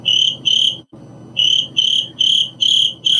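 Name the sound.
crickets chirping sound effect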